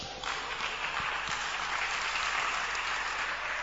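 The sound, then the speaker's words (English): A crowd claps steadily for themselves, a dense wash of many hands applauding at once with no pauses, fairly loud and even throughout with no voices standing out. “This clapping, it is for yourself.”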